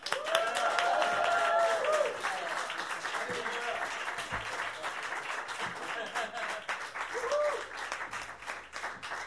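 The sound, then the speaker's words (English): A crowd at the Orbit Room applauds steadily for the first performer of the night, a dense wash of many hands clapping that stays loud for a couple of seconds, then thins slightly while continuing, with some faint voices and cheers mixed in. “Everyone, let's give a round of applause for our first performer tonight.”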